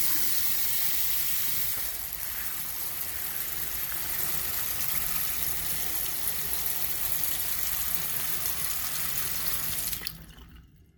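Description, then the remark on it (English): Cold water runs steadily from a tap and splashes into a basin as someone bathes their eyes, a continuous hiss lasting about ten seconds before cutting off abruptly. No one speaks. “I think I'll go and put some cold water on him.”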